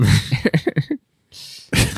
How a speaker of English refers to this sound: Sorry, I started coughing.